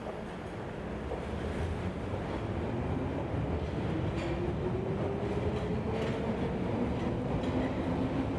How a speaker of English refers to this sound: Thank you for riding the Underground.